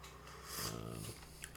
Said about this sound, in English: Sorry, my dogs are just... Arf, arf.